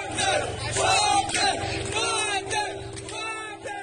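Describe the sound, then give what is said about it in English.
A crowd of residents in Rostov cheers and shouts together as Wagner's forces leave the city at 9:20 p.m., a loud, continuous roar with overlapping voices rising in bursts of whoops and chanting over a steady low rumble. “They leave to a hero's chorus as residents cheer them on.”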